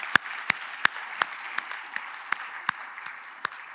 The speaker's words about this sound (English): But I especially want us to just thank, through a round of applause, our kids director,